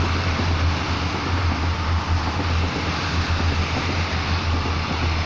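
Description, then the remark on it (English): A steady, loud rumble of a passing train fills the whole stretch, with a deep low drone and broad roaring noise that stays constant throughout, no voices over it. “Another train.”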